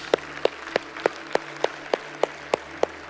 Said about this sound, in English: Let's give God a round of applause this morning.